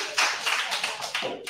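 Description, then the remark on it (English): A crowd of people clapping together after a player's foul in a game, sharp bright claps landing about five times over a dense, continuous wash of hand noise, fairly loud with no talking. “Why are they clapping when I foul?”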